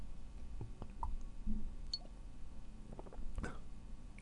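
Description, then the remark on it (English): Quiet sipping of a gingerbread-flavored soda from a bottle, with a few soft wet clicks and gulping swallows scattered across the moment and a brief cluster of mouth sounds near the end; no one speaks. “Let's take a sip here, shall we?”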